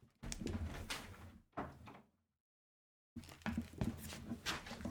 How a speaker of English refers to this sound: I'm going to open my door, too, because it's quiet here now.